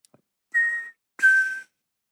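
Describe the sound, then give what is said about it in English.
A person whistles two short, steady high tones in succession, each starting with a breathy burst and trailing off with audible hiss, a voice imitating the ring of a bell. Fairly loud, no talking. “And I was like, okay, you just sort of whistle and say buh at the beginning. And it's not a good impression of a bell, but it's like the closest I have ever been able to get to it.”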